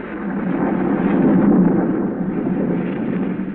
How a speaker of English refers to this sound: A storm rages wildly over the countryside.